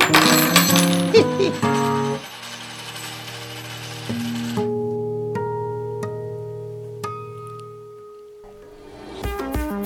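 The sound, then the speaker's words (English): A shower of coins pours down in a dense, bright jingling clatter, then thins to a few scattered clinks over a lingering metallic ring before a last brief rattle. No voices. “And from above a rain of riches fell.”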